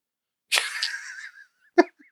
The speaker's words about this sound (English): I could probably cut out the sneeze, though. You kept it kind of isolated. You. I tried to like fling it over there.